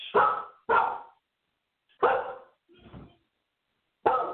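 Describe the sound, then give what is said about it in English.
A service dog inside a house barks loudly in several sharp, separate woofs with short pauses between them, one slightly softer than the rest, and no one speaking. “My service dog was in here and somebody came in my house.”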